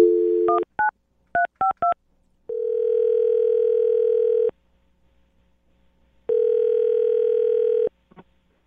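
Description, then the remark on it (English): A rapid series of touch-tone beeps as radio hosts dial a man's phone number, followed by two long, steady ringback tones with a pause between, then a faint click. No voices. “So we'll dial the phone number right now and see if we can get him on the phone, okay?”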